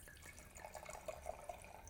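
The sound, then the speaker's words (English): Ferrando Crema, a Nebbiolo wine from the northernmost appellation in Piemonte, pours into a glass for tasting with a quiet, steady trickle broken by a few soft, bubbly glugs, with no voices. “So let me get a bit in the glass and we can taste and talk about it.”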